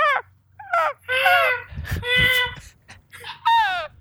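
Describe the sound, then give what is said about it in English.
Birds call loudly and repeatedly, a series of harsh, honking cries in quick succession, over a low, steady rumble of water going by. “You hear the sounds of the water going by. You hear birds.”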